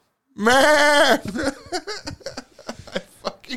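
A single loud, wavering goat bleat lasts almost a second, followed by a quick run of softer voices and laughter-like sounds.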